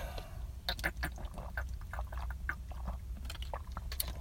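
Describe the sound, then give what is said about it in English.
Someone drinks water, a steady run of wet gulps and swallowing clicks over a low murmur, with no talking. “Let's take another drink of this water.”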